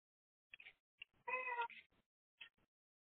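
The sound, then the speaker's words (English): A cat gives one drawn-out, tonal meow, bracketed by short clicks and soft mouth sounds. It is moderately loud, with no talking. “Even the cat can say it.”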